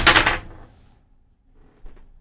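Dice are rolled: a loud, sharp clatter at the start quickly fades, followed after a short pause by a few faint, light clicks as they settle. No one speaks.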